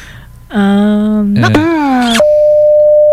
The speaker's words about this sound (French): Donc, on va écouter un premier extrait d'une sonnerie de téléphone.